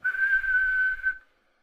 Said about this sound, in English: You start hearing the police whistles.